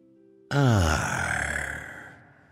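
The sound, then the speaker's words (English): A single deep, forceful breath out, loud, starting with a voiced, groaning edge and trailing off into a long airy sigh. No one speaks. “Now that's breathing like a pirate.”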